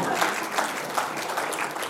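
Steady audience applause, a dense patter of many hands clapping at an even, moderately loud level throughout, with no voices standing out.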